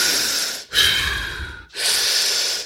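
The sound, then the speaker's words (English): Three heavy, deliberate breaths, loud: a forced inhale, a longer noisy exhale, then another sharp intake, each a rough, airy rush with no talking, shown as the wrong way to breathe in a breathing-awareness exercise. “Turn your attention, this is step two, to an awareness of your breathing process. And I don't mean breathing like this.”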